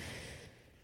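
sneeze

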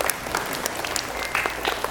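children applauding

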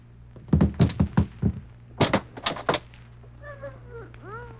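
door being opened

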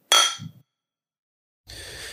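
clinking glasses

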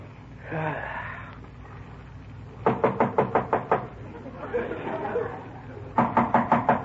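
knocking on a door

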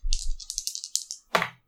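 rolling two dice

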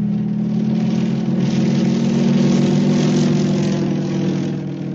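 airplane engine droning

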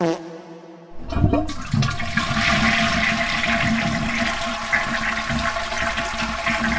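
toilet flushing

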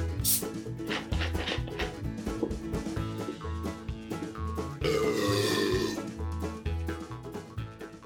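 man belching loudly

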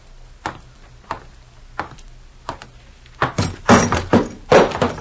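ashtray knocked over

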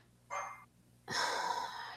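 dog barking

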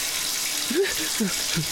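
shower water running

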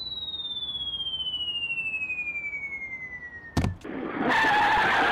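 car driving and skidding

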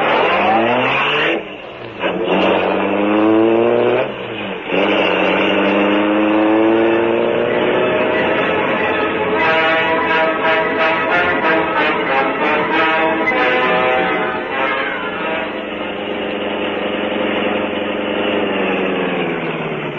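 car engine accelerating

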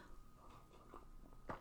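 sipping coffee

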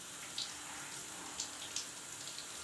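shower water running

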